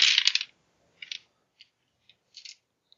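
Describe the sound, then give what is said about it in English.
Six dice are rolled for a game onto a hard surface, a rattling burst followed by scattered sharp clicks as stray dice bounce and settle over a few seconds, landing on four sixes, a two and a three. Fairly quiet, with no voices. “6 dice. Okay.”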